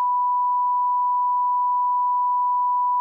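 A censor bleep: one steady, unwavering electronic tone at a mid-high pitch, held at constant loudness for about three seconds, with no voices or other sounds.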